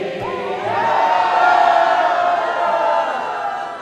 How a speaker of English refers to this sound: The crowd on the boat finishes belting out the national anthem a second time, when suddenly everyone rushes to the railing.